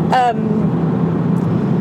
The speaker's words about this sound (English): A big southern truck just drove right by it.